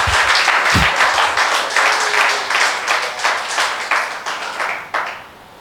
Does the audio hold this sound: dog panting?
no